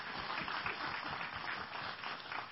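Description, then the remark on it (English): Audience clapping fills the whole stretch, a dense, steady wash of many hands with no distinct individual claps standing out, holding at an even level throughout. “Yeah, you can clap for them, please, by all means.”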